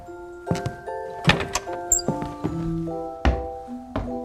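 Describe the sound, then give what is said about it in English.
A heavy door leading up to the Long Gallery groans open with a drawn-out creak, punctuated by several dull wooden thuds and knocks at uneven intervals, with no one speaking. “We're going up through another door.”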